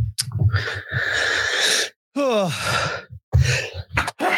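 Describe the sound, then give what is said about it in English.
A loud sneeze: a long breathy, hissing intake and burst, then a voiced cry that slides downward in pitch, followed by several short, sharp noisy exhalations. “God bless you.”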